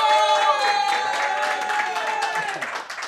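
A live crowd at a rap battle cheers and claps continuously to vote for the winner, with shouts and whistle-like cries rising over a dense wash of applause that stays loud throughout, tapering slightly at the end.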